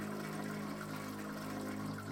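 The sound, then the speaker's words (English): Two toilets in neighbouring restroom stalls flush together, a steady rush of water with a low humming drone underneath, holding at an even level for the couple of seconds without any talking. “A moment later, I hear two toilets flush”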